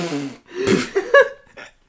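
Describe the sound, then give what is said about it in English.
A voice makes an odd, muffled burp with lips sealed and teeth open: a few quick throaty gulps and squeaky tonal bursts in close succession, moderately loud, with no words. “I had my lips sealed together, but my teeth were open. And apparently I've never done that while doing this before. I just burped, and that's what came out.”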